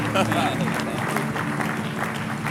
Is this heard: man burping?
no